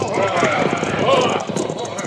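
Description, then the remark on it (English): Horse hooves clip-clop on a road in a quick, steady patter as riders ride their horses across the road to block it, fairly loud, with muffled voices and busy background noise mixed in. “Ride your horse across the road, Jose.”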